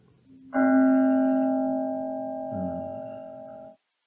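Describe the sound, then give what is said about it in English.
A single meditation bell is struck once, ringing out clearly and sustaining a rich, shimmering tone that slowly fades over about three seconds before cutting off. “So, Jody, if you ring the bell.”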